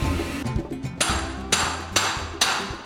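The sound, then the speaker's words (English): Steady hand hammering on a copper timpani bowl for a hand-hammered series of timpani: a few light taps, then sharp, ringing metallic blows about every half second, fairly loud, with no talking. “over here, Brett, we have the hand hammering of the hand hammered series of timpani”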